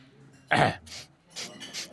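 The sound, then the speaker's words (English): A sharp, harsh throat clearing or cough bursts out, followed by three softer, breathy huffs spaced irregularly over the next second and a half. No one speaks. “Do you have a cold or something?”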